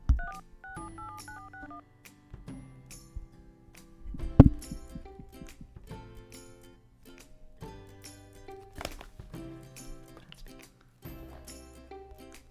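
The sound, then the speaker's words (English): A phone keypad beeps out a random number in quick touch-tone presses, a run of short dual-pitched tones in uneven rhythm, clear, with some tapping and faint background noise around them. “I'm just going to call random numbers.”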